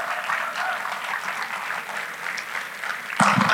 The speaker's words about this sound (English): You can applause him.